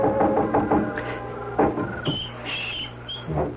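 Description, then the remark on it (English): Soft, quick knocks on a window by someone up on a porch roof: a cluster of light taps at first, then a few scattered raps after a pause, gentle, with no voices. “knocking at Polly's window gently”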